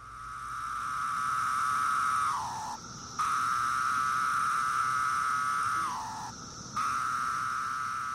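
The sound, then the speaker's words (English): A cicada of one of the most common species on the East Coast sings its steady, mellow, low whistling drone twice, each long sustained buzz ending with a downward-sliding drop-off note before a brief pause, then resuming. “And so one of the most common on the East Coast is the really mellow sound, and it sounds like a low whistle.”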